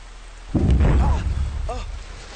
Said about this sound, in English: Get your umbrellas! Get your umbrellas! It's raining, fellas. It's raining, fellas.